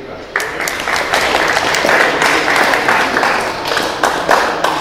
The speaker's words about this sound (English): So please give a round of applause for John Denton.